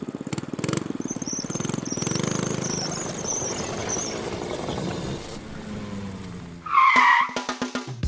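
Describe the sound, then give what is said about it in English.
A small bathtub car with a sidecar revs its engine and rattles as it speeds away, ending in a sharp tire squeal or skid, loud with a cartoonish, chaotic feel. “And we're off.”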